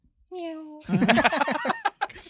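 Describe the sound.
A person gives a short, steady meow imitation, held for about half a second, as a sample of being naughty, then several voices burst into loud, overlapping talk and laughter.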